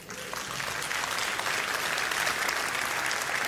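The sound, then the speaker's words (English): An audience at a church service breaks into sustained applause for God, a dense, steady wash of many hands clapping that holds at an even level for several seconds with no talking over it. “And yeah, you can give God an applause for that.”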